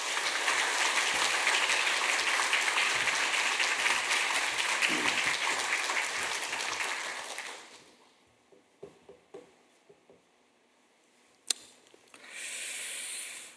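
An audience at a church applauds loudly and steadily for about seven seconds to welcome the main speaker of a youth community conference, then the clapping fades to a few scattered claps and soft shuffling, with a brief hiss at the end.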